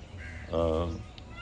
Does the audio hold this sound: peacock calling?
yes